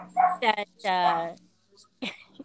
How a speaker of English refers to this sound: I love the dog bark in the background.